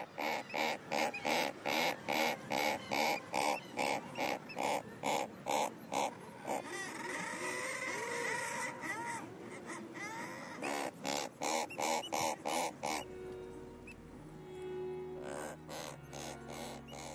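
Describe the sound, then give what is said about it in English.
Razorbills, calling from the crevices and holes in rocks where they nest, giving short, reverberant grunting calls in a rapid, steady series, with longer rasping, overlapping croaks in between. The calls are loud and there is no talking. “And razorbills seem to use their immediate acoustics of the crevices and holes in which they nest and vocalise to produce this short, reverberant call.”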